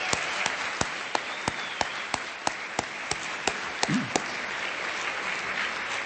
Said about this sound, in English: Just let everybody know what a wonderful job they've done. What a wonderful evening it is, and that they all deserve a big round of applause.